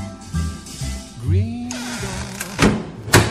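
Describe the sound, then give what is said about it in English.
A door swings with a rising creak, then shuts with a couple of solid thunks, clear against a faint low background hum. “We've closed the chat room door”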